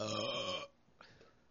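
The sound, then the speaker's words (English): A single loud, throaty burp, lasting just over half a second, followed by a quiet pause and a faint breathy sound. “So, why didn't you burp into the mic so that everyone can hear?”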